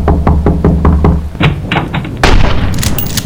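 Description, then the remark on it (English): A rapid series of about seven firm, hollow knocks on the wooden door of a house, evenly spaced, followed by louder rumbling, rushing noise of a worsening storm outside. “Look, it's my aunt's house. Better knock.”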